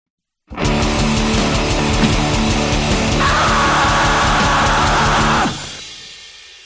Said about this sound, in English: Still fucking cracks me up that you just stood in your house and screamed to the top of your lungs, went, yeah, that one will work.